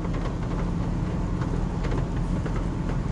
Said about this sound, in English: This car emits a lot more noise than I thought it would.